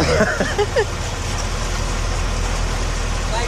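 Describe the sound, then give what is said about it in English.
A 2002 Mercedes-Benz idles at a closed gate, waiting for it to open, its engine a steady, low rumble that holds for the whole stretch, with a brief snatch of voices at the start. “What year is this Benzo? 2002. It's probably the newest car you own, right? The gate still hasn't opened.”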